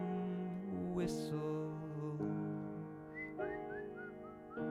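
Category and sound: human body sound, person whistling a tune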